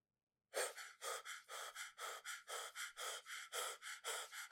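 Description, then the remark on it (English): A voice imitates heavy, rapid panting, about a dozen quick breaths in a steady rhythm, fairly loud, like someone out of breath while running laps around an auditorium. “I can't do that sound effect very well, so I'll just do the breathing one.”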